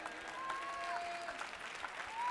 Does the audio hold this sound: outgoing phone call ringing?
no